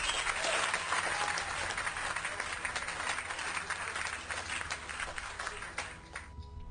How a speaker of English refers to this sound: Here, let's give me some applause for whatever happened in that call.